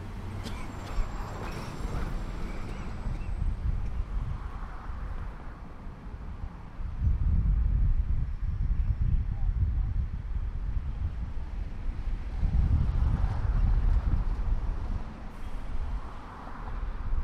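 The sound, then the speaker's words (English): A train, out of sight, rumbles past with heavy low-frequency roar swelling in waves, mixed with steady street traffic noise and some wind buffeting on the microphone, recorded standing on a patch of grass beside a post office building; no one speaking. “One interesting thing that I'll break in, just to break the monotony of listening to silence and traffic noise and the train going by now.”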